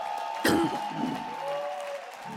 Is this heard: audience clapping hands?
yes